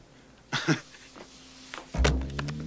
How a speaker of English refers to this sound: He bends down to pick up his pants, and when he brings his head up, he knocks them into her bonkers. Sorry. Her bazongas? It's the big inflatable ball noise they make when he hits them.